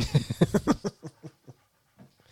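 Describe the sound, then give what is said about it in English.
A dog panting heavily during thunderstorms and fireworks, quick rhythmic breaths, loud at first, then slowing and fading into softer, sparser puffs. No one speaks. “And sorry if you hear my dog breathing like a psycho between these fucking thunderstorms and these fucking fireworks.”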